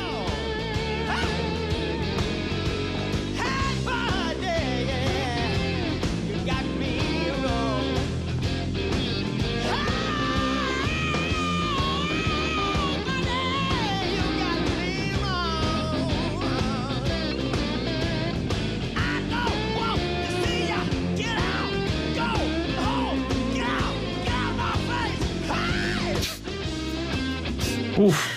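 A full-band blues rock song plays loud and steady throughout, with driving drums, thick guitars and a strained, shouting lead vocal screaming "get out of my face" on top.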